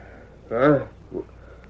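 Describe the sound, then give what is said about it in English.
A short, wavering horse whinny in the distance at a camp at night, likely a voice imitating it, rises and falls for under half a second, followed by a brief softer snort-like sound against a quiet background. “The fire had been put out, and both men were asleep, when there came a distant whinny.”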